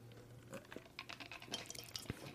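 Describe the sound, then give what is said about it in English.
A drink mixed with Sprite being poured into a cup, a quiet stream of liquid with splashy, irregular patter and a small clink near the end, with no voices. “Yeah, I done poured that bitch up with, like, this much.”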